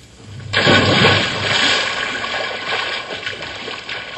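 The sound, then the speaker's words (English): A sudden loud splash as someone jumps into an old swimming hole, followed by several seconds of churning, sloshing water that gradually settles, with no voices. “So when we get to the water, all we have to do is just jump in and cool off.”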